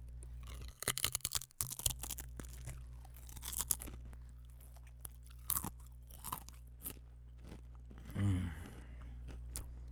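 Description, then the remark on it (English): A pack of Pringles Scorchin' Sour Cream and Onion chips is torn open and eaten: loud, rapid crunching and crackling, a dense burst early on and then scattered crisp crunches, with a short low vocal murmur near the end and no speech. “These are the Pringles Scorchin' Sour Cream and Onion.”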